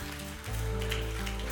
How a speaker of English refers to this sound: Oh, you can clap. Let's clap and celebrate.